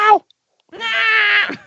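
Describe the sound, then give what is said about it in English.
A short chirp followed by a longer, drawn-out meow from Jonesy the cat that wavers in pitch, loud, with no talking over it. “That's a Jonesy clip right there. No, come on, Rob. Jonesy makes one noise.”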